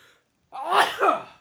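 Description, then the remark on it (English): A single loud sneeze bursts out after a brief silence, with a sharp onset, a breathy two-part explosion and a quick fade, and no talking around it. “Hold on, I have to sneeze.”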